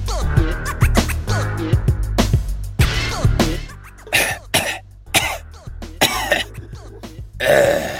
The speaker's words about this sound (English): Let the man clear his throat.